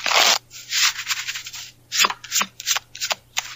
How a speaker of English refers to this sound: Let me shuffle the cards.